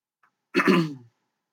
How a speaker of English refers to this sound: I guess if your drinking game is how many times your drinking game for the night is take a drink every time I clear my throat. You may not make the back half of the show.